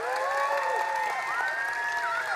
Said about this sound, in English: Can we give an extra round of applause to our motion team?